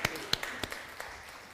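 Scattered audience clapping, fairly quiet and distant, with a handful of sharp, irregular claps rather than full, sustained applause.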